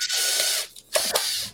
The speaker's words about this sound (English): No, I just busted that. That's why you don't push on plastic. Probably should have a backer for it. Yeah, you just gotta let the drill work itself.